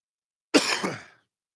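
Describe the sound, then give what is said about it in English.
A single sharp cough that rolls into a rough throat-clearing rasp, lasting about half a second before fading out, with no talking; caused by allergy drainage. “I don't have COVID. It's just drainage. It's just allergies, I promise. Every time you cough in public”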